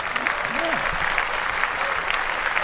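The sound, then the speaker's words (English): Steady applause from many hands, a dense crackling wash of claps held at an even level for the whole stretch, with faint voices murmuring underneath. “Clap that.”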